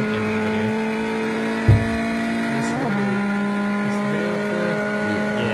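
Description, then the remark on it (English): A small turbocharged Fiat car engine hums steadily in a video, its tone stepping up in pitch partway through, with a brief low thump early on and no talking. “No, it's actually just an engine cover that someone's put on top of their standard Fiat. No, it is turbo though.”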